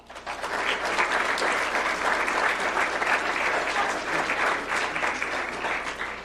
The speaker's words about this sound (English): Please join me in one more round of applause for all the Award of Excellence students. Nice, great job.